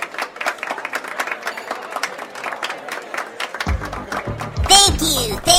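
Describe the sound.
A crowd claps in steady, dense applause for several seconds, welcoming Orko the Magnificent as the night's entertainment, and then a low rumble and an excited voice break in over the last of the clapping.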